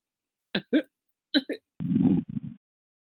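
A person snoring: two pairs of short snorting bursts, then a longer low, rattling snore that trails into two quick snorts. Moderately loud, with no talking.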